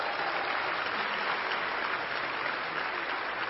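An audience applauds steadily for a 17-year-old football, basketball and track player ranked among the top 100 recruits in Louisiana, many hands clapping in a dense, even wash of sound that holds at a constant level for a few seconds with no voices breaking through.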